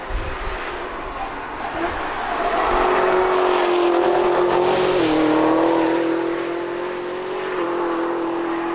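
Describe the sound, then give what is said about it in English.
The high-revving engine of a camouflaged Gen 6 Camaro test car screams steadily around the Nürburgring racetrack. Its pitch rises and dips slightly as it shifts, loud and sustained like a race car lapping a track, with no voices. “This week, a video and pictures pop up of this camo Gen 6 car. Super mega Camaro. Screaming around the ring.”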